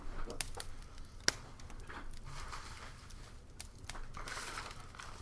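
Someone rummages through a crinkling brown paper Publix bag, with irregular rustles and crackles and one sharp crunch early on. No one speaks.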